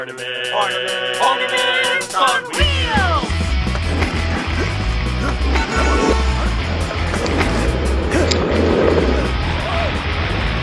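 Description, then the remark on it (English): Skateboard wheels rumble loudly and steadily over city pavement amid passing traffic, with sustained horn-like tones at the start before the rolling noise takes over. “Ornaments on Wheels comes to you via skateboard.”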